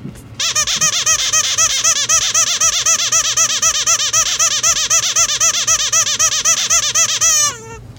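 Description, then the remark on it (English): A squeezed rubber chicken toy squawks in a long, continuous series of rapid, shrill, wavering honks for about seven seconds, then abruptly stops with a short descending squeal. “Oh man, you're just gonna squeeze that throughout the episode, aren't you?”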